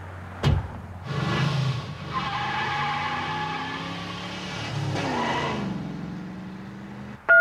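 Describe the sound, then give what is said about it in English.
A car arrives with a steady engine drone and some tire squeal, and a car door is opened; a sharp clunk at the start and another partway through, then a brief high tone at the very end. “He opened the door and helped me to get out.”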